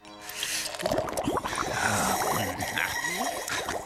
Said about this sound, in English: What are you doing? Just a few bubbles.